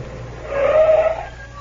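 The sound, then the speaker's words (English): A car brakes to a stop on the island of Java, a short squealing tone rising over a steady low engine rumble and then fading away, moderately loud. “Stop the car”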